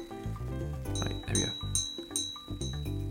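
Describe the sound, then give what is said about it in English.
Several soft, chime-like clinks from something on a lamp, not a wind chime, ring out one after another, bright metallic tones that shimmer and fade over a low, steady background murmur. “Is that a wind chime or something? No, but it sounds like it, right? It's on my lamp.”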